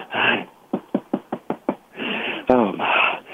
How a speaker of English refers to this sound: I'm here at the door. All right, you ready? Yeah. All right, go ahead and knock on the door. All right, here we go.